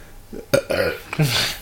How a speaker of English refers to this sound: I don't know about this beer. It's making me burp a lot.